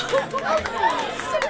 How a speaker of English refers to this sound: I'll have to get used to that sound. The world cheering for my beautiful fiancé. They're cheering for us both, my love.